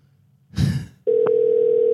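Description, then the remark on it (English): A phone line's ringing tone of a call placed from Australia to a man's cell phone begins after a short burst of rustling noise, a steady, clear electronic hum that holds at an even, fairly loud level until the end. “He'd be seeing Australia calling through on his phone, on his cell.”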